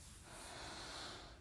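A slow, deep nasal inhale, a soft steady airy rush drawn in through the nose for over a second, quiet with no talking.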